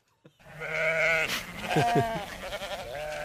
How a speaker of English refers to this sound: will you have goat noises in the background when Here's you're calling? A thought.